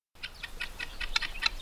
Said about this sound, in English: This is a flock of guinea hens. They're often called African pheasants because of their origins, and the farmer's watchdog because of the sounds they make when spooked.